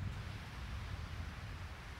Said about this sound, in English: That's the real ocean. It's the ocean. I hope it's not just coming off as noise, but I thought, like, I'm in Hawaii. I should do something. I should get outside and do something. I'm in Kauai. I'm looking out at the sun is just setting.